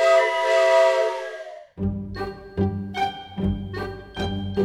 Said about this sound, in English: The sound of the train whistle means it's time to play Walt Disney World Insider Free Association.